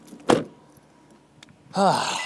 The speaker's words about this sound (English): You know what, I'm going to get out of this car. And it's not even my car, it's my mom's car that I use.